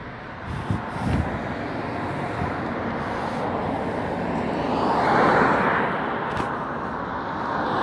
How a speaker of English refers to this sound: There's a whole bunch of truck, it's 18 wheelers. There's like 1, 2, 3, 4. 1, 2, 3, 4, 5, 6, 7, 8, 9. There's 9 18-wheeler trucks right here. I'm walking by.